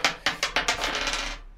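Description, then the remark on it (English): Dice rattle and tumble across a hard surface: several quick, sharp clicks at first, blurring into a dense, fading clatter as they settle. The sound is moderately loud, with no voices. “We got to roll the dice.”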